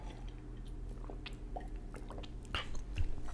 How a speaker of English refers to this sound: Hold on, let me take a sip of water here.